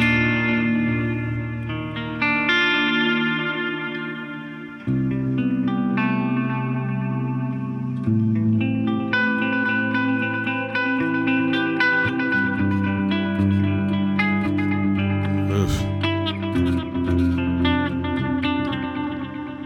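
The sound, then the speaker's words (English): Sustained electric guitar chords played through Screamer and Halo pedals plus the Caverns delay and reverb pedal, washed in lush reverb and effects, notes blooming and overlapping into a dense, shimmering wall of sound that plays steadily without any talking. “Add the reverb from the Caverns.”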